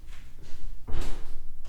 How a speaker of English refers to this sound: Hang on. Can you close the door?